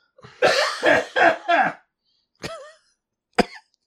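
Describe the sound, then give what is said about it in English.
A fit of coughing: four quick, harsh coughs in a row, then a pause and two single, sharper coughs spaced apart, caused by a little tickle in the chest. “I think I'm going to leave my coughing in there for character.”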